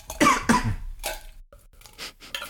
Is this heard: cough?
yes